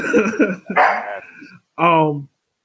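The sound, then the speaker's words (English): The speaker's dogs bark in a quick cluster of loud, sharp barks, then a short pause and one more drawn-out, strongly voiced bark. “Once again, my dogs agree with me that the rainbow cookies are really good.”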